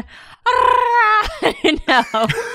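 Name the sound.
voice imitating Chewbacca roar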